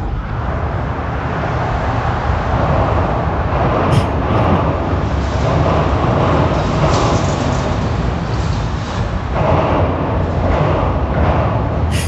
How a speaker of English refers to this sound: That doesn't sound like some it jerk does. In his car. That does. Vrooming. Sounds like a big truck. Humongous truck. But it's people driving over the overpass. That's all it is.